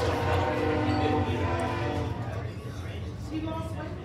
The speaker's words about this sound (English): damn this train. Give me an extra minute.